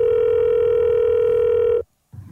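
A loud, steady telephone tone before a voicemail message holds for nearly two seconds and cuts off abruptly, followed by a brief silence and then a faint low rumble of background noise.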